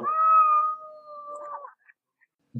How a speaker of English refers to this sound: But the rest of it was okay, mainly because I had a cat saying my name.